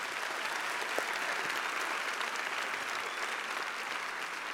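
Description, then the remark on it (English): A crowd applauds steadily for several seconds for musicians who played a piece by Pachelbel, a dense wash of many hands clapping at once, even in loudness with no voices standing out. “Yeah, you can clap for them, definitely.”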